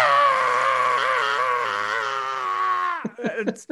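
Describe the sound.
A person imitates a shrill black-metal scream, one loud, strained, sustained note held for about three seconds, then breaking off into a few short, choppy vocal bursts.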